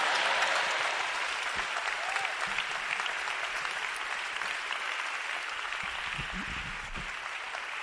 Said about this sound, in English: Clap for the young boy.